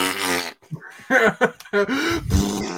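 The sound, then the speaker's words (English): A loud, drawn-out fart sound, followed by several shorter sputtering bursts and a final low, rumbling blast, all prominent with no talking over it. “Just a big old fart.”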